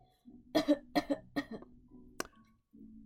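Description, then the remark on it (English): A series of four or five harsh coughs in quick succession as a doctor listens with a stethoscope on the back, followed by a sharper final cough and a short low rumble, with no talking. “Puts his hand on your back with a stethoscope in place. And cough.”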